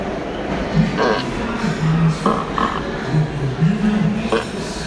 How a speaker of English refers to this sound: It's just fart noises. Do you think he recorded them himself?